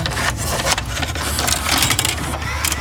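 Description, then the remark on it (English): A VHS tape being handled, its plastic cassette door clicking open and shut amid a busy run of rattling mechanical clatter that carries on steadily for a few seconds. “It's a VHS tape.”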